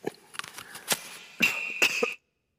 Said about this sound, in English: You don't know how hard it is to cough with a microphone on you.